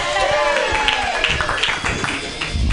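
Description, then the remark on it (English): An audience at a stand-up comedy show claps steadily throughout, a dense, continuous patter of many hands at moderate loudness, with some voices mixed into the crowd noise. “Those who are not clapping, you're looking at your likes.”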